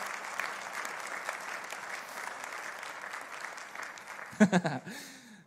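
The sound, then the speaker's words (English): An audience applauds steadily as returning series speakers walk up on stage, a dense wash of many hands clapping at once, fairly loud and sustained, with a man's voice briefly speaking near the end as the clapping continues. “Could you join me in welcoming them as they come up? That's clapping.”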